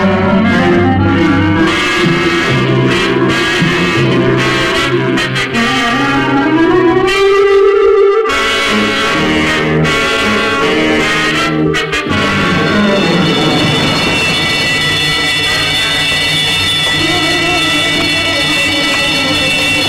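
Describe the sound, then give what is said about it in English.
A burglar alarm rings loudly and continuously on 7th Street, a harsh, steady metallic clamor that sets in after a murky, shifting stretch and holds unbroken to the end, with no voices. “Hear that burglar alarm?”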